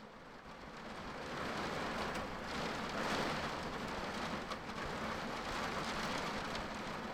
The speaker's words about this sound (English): It is raining. There's a storm, as you can hear, and our power's out.